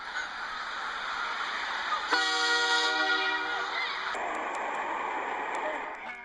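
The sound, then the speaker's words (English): A train rumbles steadily past, and partway through a loud, sustained horn blares for about two seconds before cutting off, leaving the clattering roar of the cars. “Next, I hear the sound of a train.”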